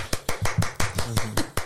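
A quick, steady run of about eight sharp hand claps, fairly loud, like one or two people applauding, with a faint voice murmuring underneath.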